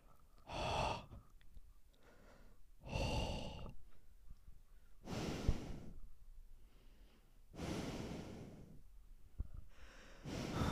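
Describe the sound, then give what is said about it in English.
Slow, heavy breathing imitated by a voice, mimicking a masked killer's breathing: about five loud, raspy breaths alternating in and out, with no talking. “It's like the shape's point of view, POV, and yeah. It's the breathing.”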